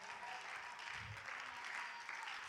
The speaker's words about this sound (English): Hallelujah. Clap your hands and let's thank the Lord together. Hallelujah.